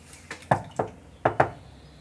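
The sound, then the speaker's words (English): Several sharp knocks on a door at an embassy in two quick bursts, a pair then another pair, fairly loud with brief resonance, no voices. “I just knocked the door, but...”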